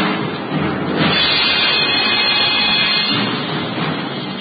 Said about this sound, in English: The storm that raged that night around the castle of Rutherford, the castle of Cedric the Saxon, was no more tempestuous or violent than were the times.